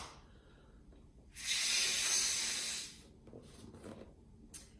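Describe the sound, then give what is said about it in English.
A loud, steady rush of air, like someone blowing hard into a balloon, lasting about a second and a half before fading, followed by fainter breathy puffs. “I want you to blow that in your balloon.”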